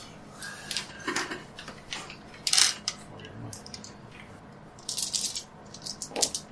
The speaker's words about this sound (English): I'm just going to roll half the dice and I'll take all of it. So that's easier in my head.